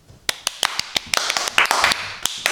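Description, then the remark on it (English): Scattered hand claps start out sparse and uneven, then thicken into a brief burst of overlapping applause from a small audience before tapering back to a few isolated claps. “I mean, the clapping was good.”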